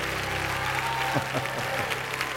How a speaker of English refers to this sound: Give God a big hand clap, would you? Come on. Come on, a big old shout.